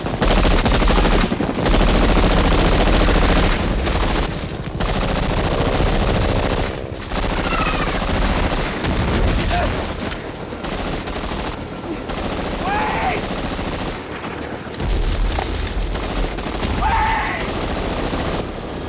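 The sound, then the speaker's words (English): Dense, loud gunfire in a film battle scene, with rapid machine-gun bursts and scattered shots as a soldier keeps shooting to hold off the enemy while others board a rescue helicopter, layered over the heavy thrum of the helicopter, with shouting voices and dramatic battle noise throughout. “still shooting, holding off the enemy while they're getting on the chopper.”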